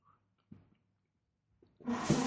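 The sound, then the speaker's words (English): A couple of soft mechanical clicks, then a sudden loud whirring rattle as a cat's automated, timed dry food dispenser kicks on and drops dry kibble. No one speaks. “My cat shot out of the box she was laying in because her dry food dispenser went off. It's an automated. Yeah, we have a timed food dispenser, and as soon as she hears that, it's like a bullet.”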